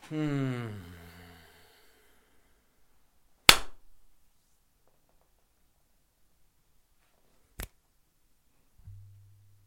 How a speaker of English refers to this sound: So I got one slap, two snaps, and a light microphone rub. That's exactly correct. It was kind of like was going in for the second slap, but determined, let's just kind of fade those into two snaps.